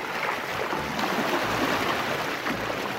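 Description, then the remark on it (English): A steady rush of water and wind as a zero-emissions electric hydrofoil water taxi, called a sea bubble, glides along a river in Paris, with a faint low hum underneath and no voices. “They're calling it a sea bubble, a zero-emissions boat that appears to fly above the water.”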